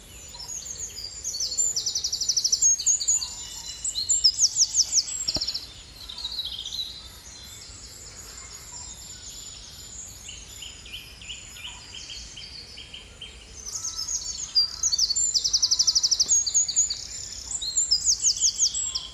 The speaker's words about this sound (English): I think it's amazing how soft that sound is when it comes out of a beak so fierce. Just tiny sounds as it settles in.